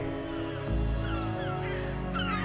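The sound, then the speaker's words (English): Gulls call repeatedly over a steady low rumble of waves or harbor ambience in a bustling coastal town, their cries rising and falling with no talking. “The sound of gulls mewing and the salty smell of fish and seaweed marked Howlstone like any other bustling coastal town”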